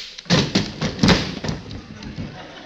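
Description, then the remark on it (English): A flurry of heavy punches as a man is knocked out: four or five dull thuds land in quick, uneven succession, then give way to softer scuffling that fades out. “You knocked him out.”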